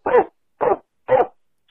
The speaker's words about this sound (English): And that dog sounded like he was fucked up on those dog treats.